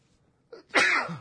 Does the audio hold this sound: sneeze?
yes